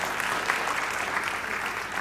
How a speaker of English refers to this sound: It definitely deserves a round of applause. Come on.